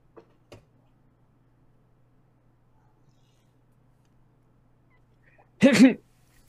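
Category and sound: human body sound, sneeze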